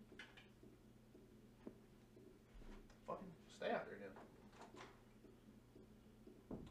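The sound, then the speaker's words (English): A door being opened: a few soft clunks and a brief rattle midway through, quiet against a steady low background hum. “I thought Axel was at the door.”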